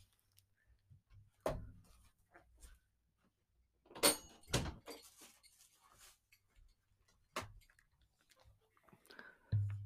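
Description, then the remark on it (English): A door being closed: a series of sharp clunks and thuds, a latch click and a heavier bump, spread over several seconds. “I also realized I should probably close my door more, so I shall hurry back quick to do that.”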